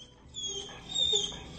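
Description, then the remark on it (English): A puppy whines at a deer in thin, high-pitched squeaks, a few wavering cries over about two seconds, fairly quiet, with no talking. “Maybe the puppy isn't too happy about the deer.”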